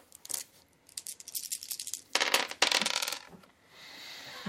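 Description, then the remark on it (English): Five dice clatter and rattle across a hard surface in bursts of rapid clicks as they are rolled for damage in a game, then settle into quiet. No one speaks. “Go ahead and roll damage. Five dice.”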